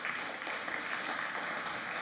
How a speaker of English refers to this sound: Well, good morning, church. I'm so blessed by these guys, and can we just give another round of applause for our children?